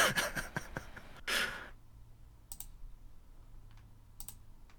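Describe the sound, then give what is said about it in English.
A rapid flurry of computer keyboard typing done with one hand, fairly loud, then it slows to a few scattered, isolated keystrokes over a quiet background. “I'm typing with one hand.”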